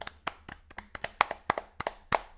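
A few people clap together in a loose, uneven patter of sharp slaps, with no one speaking over it, applauding the creator of the game Mission to Planet Hex.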